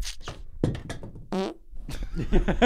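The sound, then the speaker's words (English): A voice makes mouth-made fart noises as a greeting: a string of wet, sputtering raspberries, with one long buzzing blast in the middle, loud and continuous for a few seconds. “That's Piglet Squidward's greeting. He only talks in fart.”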